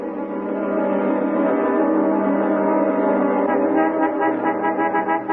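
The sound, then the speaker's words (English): The horn of a moving truck blocking a driveway honks in one long, unbroken blast for about five seconds, loud and brassy with a steady low pitch that wavers slightly toward the end. No one speaks. “You honking at us, lady?”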